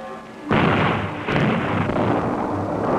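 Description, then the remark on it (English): A sudden, loud dynamite blast on canyon walls, set in holes drilled in the rock during dam construction, booms out of near-quiet, then a second burst follows a moment later, leaving a heavy, sustained rumble of falling rock and echo. “Suspended on ropes, they drilled holes in the rock and loaded them with dynamite.”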